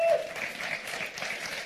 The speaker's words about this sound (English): So we thank you for joining us as well. So with that, yes, give them a hand clap.